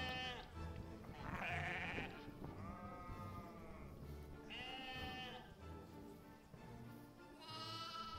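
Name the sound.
sheep bleating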